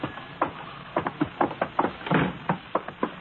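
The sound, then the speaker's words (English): A bar's saloon door swings open as a television set is carried in, its wooden panels flapping and knocking back and forth in a quick, uneven series of about a dozen sharp raps, with no voices. “I'll go ahead and get the saloon door.”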